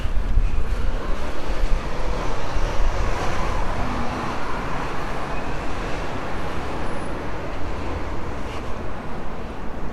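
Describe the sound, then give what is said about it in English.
Steady, dense road traffic rumbles around a roundabout for the whole stretch, cars passing one after another with a constant broad hiss and low engine drone, no voices. “You can never tell which direction the cars are actually going to go.”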